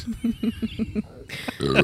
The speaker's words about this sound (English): Podcast is only burps.